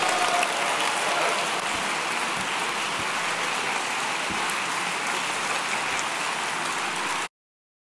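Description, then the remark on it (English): A crowd applauds steadily, a dense wash of many hands clapping at an even loudness for about seven seconds before it stops abruptly. No voices are heard. “We are literally clapping for nothing.”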